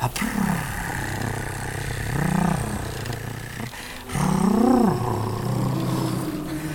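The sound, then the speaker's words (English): Anguished whale song: three long, low, mournful calls that rise and fall in pitch, each swelling and fading over a steady rumbling drone, then starting to subside. They are loud, with no talking. “And the anguish of the whale song is intense, but it starts to subside just as Pagluisa continues to purr and try and calm it with its song.”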